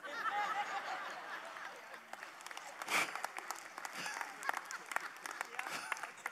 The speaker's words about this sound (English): Oh, I thank you for clapping, women